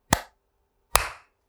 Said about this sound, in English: All right. You want to clap on 3, 2, 1.